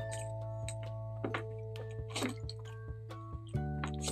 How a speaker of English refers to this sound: All right, I'm gonna drink some water, and we're gonna, and then.